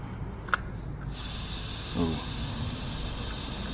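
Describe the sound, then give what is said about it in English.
A sharp click, then a portable gas stove is turned on to boil drinking water in a cup, opening up with a steady, bright hiss of escaping gas that holds at an even level to the end, over a low background murmur. “I hear it going. Let's put a flame to it.”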